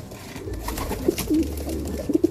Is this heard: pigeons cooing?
yes